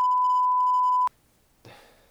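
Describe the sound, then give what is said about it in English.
A loud, steady censor bleep tone holds for about a second, then cuts off abruptly into near silence before a faint burst of speech-like noise begins. “He'll beep it, relax.”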